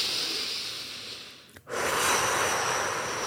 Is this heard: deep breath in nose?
yes